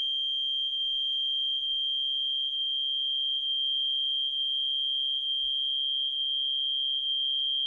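A shrill, high-pitched alarm tone sounds continuously and steadily for the whole stretch, loud and unbroken, with no speech, only a faint low rumble beneath it.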